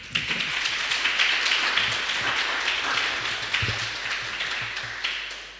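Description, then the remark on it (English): Audience applause welcoming speaker Stephanie Rosenthal before her talk, a dense, steady wash of many hands clapping at once, sustained at an even level throughout with no voices over it. “So please give Stephanie Rosenthal a hand of applause.”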